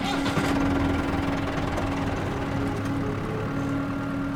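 A tractor engine runs steadily on an old farm surrounded by cornfields as it is driven into a barn, a low rumbling drone with a constant hum throughout and no voices.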